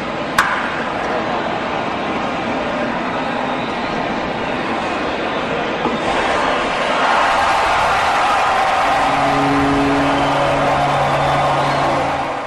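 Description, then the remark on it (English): A single sharp bat crack of a home run, hit off a fastball from lefty pitcher Nestor Cortez, rings out at the start over a steady wash of piped-in crowd noise. The roar swells louder midway, and low sustained tones join near the end. “He left a fastball up, and that was hammered. Here was the sound of that.”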